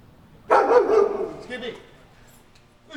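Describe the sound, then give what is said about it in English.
Guard dogs bark in IntelliGuard's kennels across a parking lot, home to 26 trained dogs including German Shepherds, Rottweilers, a bomb-detection Cocker Spaniel and a prize bloodhound; a loud burst of overlapping barks starts abruptly then trails off into fainter yips and echoes, with a voice faintly present underneath. “Just across the parking lot are the kennels, where IntelliGuard's 26 dogs are housed.”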